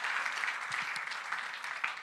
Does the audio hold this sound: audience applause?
yes